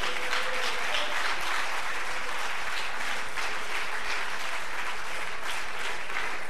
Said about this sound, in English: Let's give the Lord a hand clap of praise for a moment.